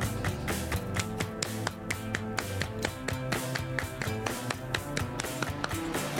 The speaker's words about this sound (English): I like this clap moment. It like makes me dance in my car all the time.